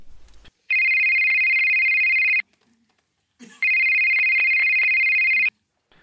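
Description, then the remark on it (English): A telephone rings twice, each ring a long, loud, steady electronic trill lasting nearly two seconds, separated by a short pause, with no one talking. “Sorry, that must have been the wrong phone call. Try the next one.”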